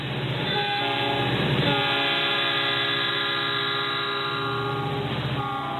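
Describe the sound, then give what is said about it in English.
A train horn blares with sustained, steady tones while rail cars roll past, a continuous rumble and clatter without any voices; the train carries Elizabeth May's Green Party of Canada campaign on a whistle-stop tour. “Meanwhile, Elizabeth May recently began a campaign tour by train, opting for a more green approach, unlike the aircraft used by her political opponents.”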